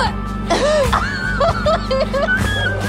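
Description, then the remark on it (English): A person mimics gasping, fish-out-of-water breathing: a run of short, strained, voiced gulps and squeaky wheezes in quick succession over a steady low hum. “Fish out of water breathing?”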